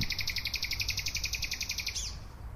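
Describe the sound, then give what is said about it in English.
A nightingale sings a fast, steady trill of bright repeated notes ending in a quick downward slur, clear over a low, constant rumble of traffic, at night near oak trees in the Tiergarten, Berlin, about 50 meters from the presidential palace. “This is one of the favorite places that nightingales stay for the 6 weeks or so that they're here.”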